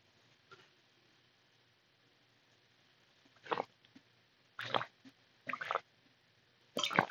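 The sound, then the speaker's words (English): Sips of water, four or five short wet slurping gulps spaced a second or so apart against a quiet background, with no talking. “A little bit of water.”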